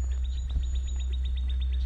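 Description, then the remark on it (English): Birds calling with a quick, evenly spaced series of high chirps, about a dozen in a steady rhythm, fairly faint over a constant low rumbling background, outdoors in northeastern Florida as the sun slowly comes up on a foggy morning, about 60-something degrees. “But I think you might be able to hear those birds.”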